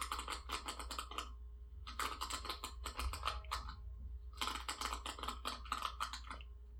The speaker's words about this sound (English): It sounds like a laptop keyboard, or just goes to show what you kind of items you interact with on a daily right. basis.